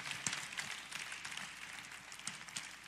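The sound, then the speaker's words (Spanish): A crowd applauds steadily for about three seconds during a call for prayer, as people come to the front to be prayed for: a dense, even patter of many hands clapping at a fairly soft level with a few sharper claps standing out, and no voices. “Un aplauso, sí, porque a veces no es fácil romper.”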